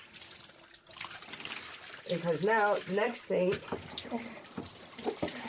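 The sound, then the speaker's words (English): Running water splashes and trickles steadily throughout, a broad hissing wash with small sloshes, as a big blue Cochin show cockerel is washed indoors in a house, while a person talks over it. “This just kind of gets them nice and wet.”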